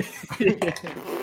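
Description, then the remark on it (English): A brief, buzzy fart noise, apparently made by someone's voice, rises and sputters for about a second, moderately loud, with a rough, throaty edge. “Farting as he does it.”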